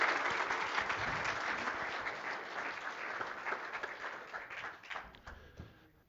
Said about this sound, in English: He's been very courageous, and I would like you to give him a round of applause as he goes down and thank him for doing this.